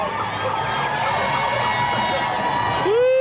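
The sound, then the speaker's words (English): A large outdoor crowd of spectators at the New York City Marathon cheers and roars continuously along the race route, a dense wall of voices, and near the end a loud rising siren-like tone cuts in over the noise. “He's really pumping up it's the crowd.”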